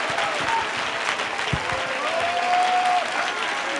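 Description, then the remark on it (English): An audience claps and applauds in praise in a dense, steady wash of many hands that stays loud for the whole stretch, with a faint sustained tone and scattered voices underneath. “Oh, clap your hands and give him praise all over this place.”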